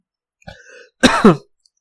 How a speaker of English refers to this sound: My coughing is only from my dust. I was doing some sanding and shit. I don't have the corona.